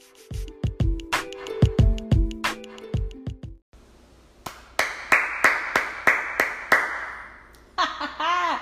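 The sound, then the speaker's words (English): Crowd gives a standing ovation with steady, rhythmic claps over a noisy cheering bed, following a short burst of tonal, percussive music and ending in a bright shimmering chime. “That clap, that standing O is for you all out there that are listening.”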